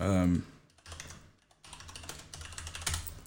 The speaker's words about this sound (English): I have a very clicky keyboard. Leave me the fuck alone. It's mechanical, bro. It is.